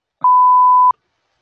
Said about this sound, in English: I'll beep that out. Beep!